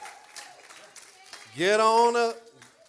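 An audience cheers for a pastor being called up to the front, over steady crowd noise and scattered applause, then a single loud, rising whoop cuts through for about a second before settling back into the crowd.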